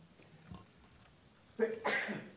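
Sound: sneeze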